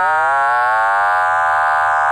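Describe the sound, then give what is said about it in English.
A steady electronic oscillator tone from an electronic music system, loud and buzzy with dense harmonics, modulated by a fast sine-wave control oscillator whose frequency is being changed, so fainter combination tones above and below it glide and shift in pitch over about two seconds. No voices. “And you hear various tones as I change the frequency of the control oscillator.”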